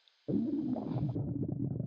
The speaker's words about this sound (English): You push a button on the painting of Shrimp Louie and you hear your stomach growling.